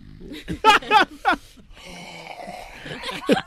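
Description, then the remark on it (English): A few short voiced grunts or laughs, then a long, rasping, noisy exhale, like heavy labored breathing, ending with another brief voiced sound. “You're fucking breathing like Biggie. Labored breathing?”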